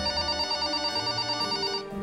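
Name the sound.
telephone ringing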